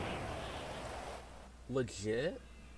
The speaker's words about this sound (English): Oh, it's raining already?